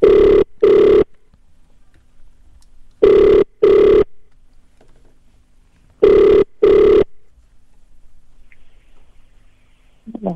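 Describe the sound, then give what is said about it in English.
A telephone rings three times in the classic double-burst pattern, each pair of loud electronic trills separated by a few seconds of near silence, ending with a faint rustle. “The phone is a ring.”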